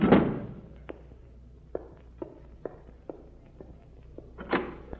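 A door thuds shut, followed by a few soft footsteps crossing a room, then another heavier door knock or thump near the end.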